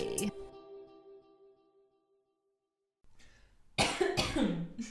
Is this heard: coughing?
yes